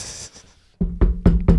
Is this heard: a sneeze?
no